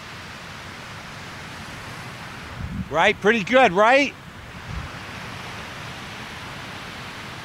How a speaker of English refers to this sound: No music tonight. No guitar playing anyways. Why not just listen to the sound of the waves?